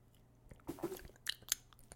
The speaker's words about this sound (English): Sips? Ooh, sips. Yeah.